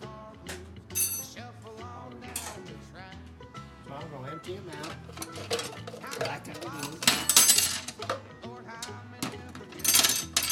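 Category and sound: household object, dishes clattering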